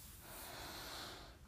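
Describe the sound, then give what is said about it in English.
A long, steady inhale drawn in through the nose, breathy with a soft hiss lasting about a second and a half, no talking over it. “Taking a deep breath in through the nose”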